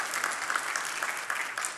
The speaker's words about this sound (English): Now, yeah, you can stop clapping for God. That's awesome.